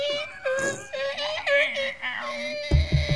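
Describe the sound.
A voice imitates a creaking door with strained, wavering, high-pitched moans that glide up and down for a few seconds, then break into a rough, raspy rattle at the end.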